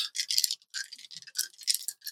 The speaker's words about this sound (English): Looks like I am re-rolling some danger dice here. I am re-rolling these danger dice, and I'm keeping these because I have no choice to. All right, yeah, I like sixes better than twos, yes?